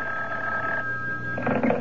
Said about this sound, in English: And then, on the morning of the third day after Myrna's call, when I wasn't even thinking about the phone, it rang.